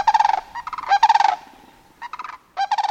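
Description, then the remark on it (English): A lone pair of sandhill cranes passes overhead, giving loud, rolling, rattling bugle calls in three bursts separated by short pauses, with no voices present. “But look, there, black on the pencil line of horizon, a first lone pair, sandhill cranes calling and crooning and their wings whispering, they pass right overhead and vanish into thin air.”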